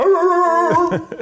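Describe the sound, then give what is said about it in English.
A man's voice imitates a dog barking: one long, drawn-out vocal howl followed by a few quick, sharp barks, loud. “we don't bark anymore.”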